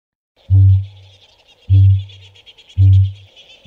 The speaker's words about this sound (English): Here is an actual call of the kakapo trying to desperately find a mate.